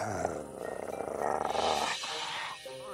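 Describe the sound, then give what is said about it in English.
A voice imitates a werewolf's growl, a rough, rumbling snarl that swells and holds for a couple of seconds before trailing off into a strained, raspy finish. It's fairly loud. “Oh, that's why you didn't want to look at the moon. You're a werewolf.”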